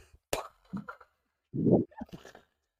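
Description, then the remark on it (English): A voice imitates a man's splashing diarrhea hitting a bathroom toilet after he chugged about 100 fluid ounces of prune juice: a sharp spitting burst, a few wet sputters, then a loud sustained gushing spray followed by scattered bubbly splutters. “it's like I turned the fucking faucet on, dude.”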